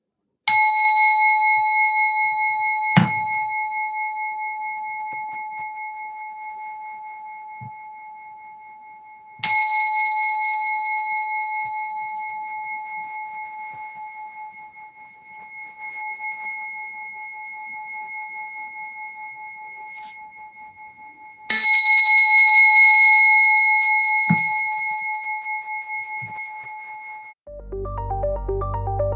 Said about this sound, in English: And I'm going to leave you with some sound from my new toy, a little tiny singing bell.